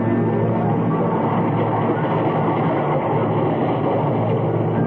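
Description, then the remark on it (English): A train rumbles steadily and loudly throughout in the commuter section of a railway station, a dense, continuous roar of wheels and carriages with a faint rhythmic clatter. No one speaks. “This is the story of Alec Harvey and Laura Jessen and a life lived in the commuter section of a railway station.”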